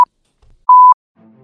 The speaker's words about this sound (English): So I'm going to hit a little fucking little beep here.